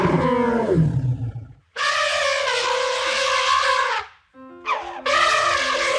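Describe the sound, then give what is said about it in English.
A living elephant roars in three loud bursts: a falling bellow, a long sustained blare, then a short rising call into another brassy roar. No one speaks. “The exhibit is a living, breathing elephant.”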